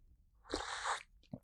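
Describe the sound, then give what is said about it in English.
A single loud slurp of hot tea, a hissy drawn-in rush of air and liquid lasting about half a second, followed by a brief soft gulp. No one speaks. “It's not easy to slurp some tea.”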